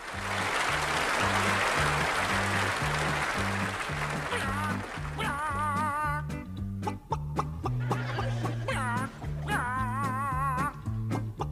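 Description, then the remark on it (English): Chickens cluck along to an upbeat song with a steady, thumping bass beat. Bursts of warbling clucks ride loudly over the music, coming and going in short phrases. “our first song, if I can call it a song, of the episode with … clucking along to … is the tune”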